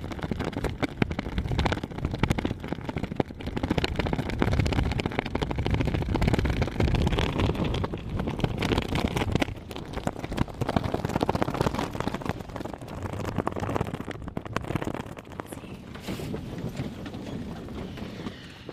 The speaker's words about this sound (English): And I am headed to a flag, which is quite a bit windier and flappier than it was the other day.